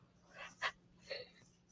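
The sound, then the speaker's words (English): A breathy, airy yawn with a sharp inhale in the middle and a softer, higher-pitched exhaling sigh at the end, with no talking over it. “Oh, so sorry. I'm yawning.”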